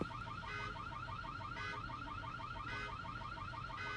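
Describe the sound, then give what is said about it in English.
A car alarm blares continuously, its repeating electronic warble cycling steadily at a loud level with no voices over it. “How did the car alarm start going off?”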